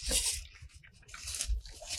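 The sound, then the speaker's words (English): Someone bites into a crunchy fried chicken sandwich, with loud, crackling crunches in two bursts separated by quieter chewing, and no talking. “It's crunchy. I like crunchy.”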